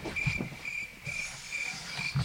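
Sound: cricket chirping sound effect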